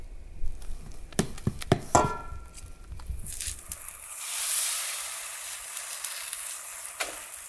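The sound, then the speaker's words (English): A few sharp clicks and knocks, then mesquite flour pancake batter on a hot griddle breaks into a bright, steady sizzle that swells quickly and keeps hissing, with a single soft tap near the end. “Okay, first pancake is going on.”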